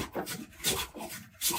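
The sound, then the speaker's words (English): A hand plane, one of Lu Ban's ideas, pushed across wood in a few repeated strokes to plane it smooth, each a bright, breathy rasping swish that rises and fades. No one speaks. “It can be used to plane wood nice and smooth.”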